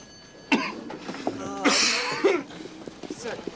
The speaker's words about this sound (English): what did the doctor say about that cough? And he keeps coughing. He says, it's highly contagious.